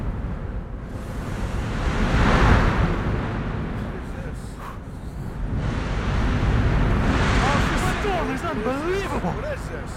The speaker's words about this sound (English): How could you be sleeping? How could you sleep? In a storm like this?